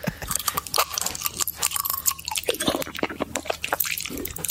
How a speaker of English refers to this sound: Broken glass, I think. I think that's broken glass. It's not nice, is it? I'm so sorry. Popping candy? No. No, it's not. No. It's broken glass. Someone ate broken glass for an ASMR video.